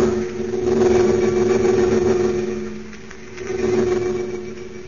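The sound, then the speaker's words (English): A converted army bomber's engines roar in a steady, loud, low droning hum as it flies high above dark storm clouds toward the American border; the hum swells slightly and dips midway before rising again, with no voices. “High above a dark layer of storm clouds, a converted army bomber streaks in the direction of the American border.”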